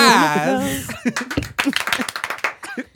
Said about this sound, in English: Hold the damn claps, okay?